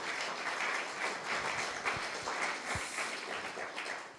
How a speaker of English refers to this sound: Why don't you give yourselves a huge round of applause? Thank you so much.